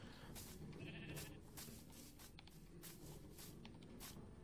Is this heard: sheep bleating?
yes